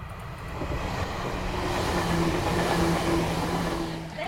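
A train rumbles steadily through a railway station, a continuous, fairly loud roar of wheels and engine with a faint high whine running through it and no voices.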